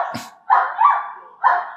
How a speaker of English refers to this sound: Wait. What's going on? Is that a dog? There is a dog.